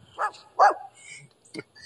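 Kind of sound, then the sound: animal, dog barking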